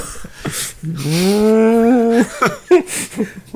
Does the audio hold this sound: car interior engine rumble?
no